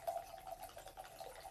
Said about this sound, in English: I'm pouring wine, not peeing. Fresh pour. You know what? While we're at it, hit it. Oh, you dripped it on my notebook.